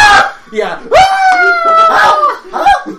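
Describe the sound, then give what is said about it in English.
A person lets out a mock, agonized scream imitating a man on fire, a strained, wavering wail that rises and holds for a second or two, broken up by shorter squawking vocal bursts. “Screaming.”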